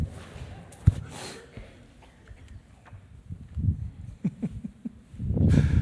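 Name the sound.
person coughing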